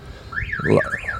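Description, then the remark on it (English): A car alarm wails in a loud, steady rising-and-falling siren tone, sweeping up and down a few times in quick succession with no voices. “Like that car alarm off.”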